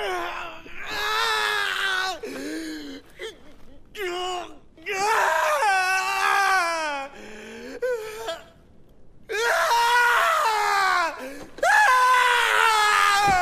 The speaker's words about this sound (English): and he just goes outside and just screams.